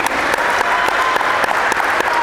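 A crowd claps steadily in a dense, continuous round of applause, many hands blending into a loud, even patter with a few sharper individual claps standing out.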